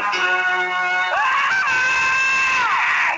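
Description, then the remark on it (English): A loud, sustained scream rises sharply in pitch and holds high and strained for a couple of seconds, with faint crowd noise underneath. “I put 9:55, …'s scream. Because it is crazy.”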